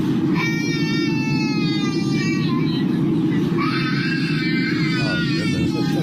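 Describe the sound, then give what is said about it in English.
Children wail in two long, high-pitched bouts of crying, their voices rising and breaking, over the constant low roar of an airplane cabin. “She actually recorded some of the audio. It's not great audio, Shaw, but give it a listen. It's a lot of crying.”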